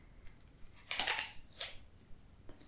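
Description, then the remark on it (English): Someone crunches into an apple, with one long crisp, crackling bite followed by a shorter second crunch, plus a few faint clicks of chewing. No one speaks. “I feel like you're crunching an apple in quite a pointed way.”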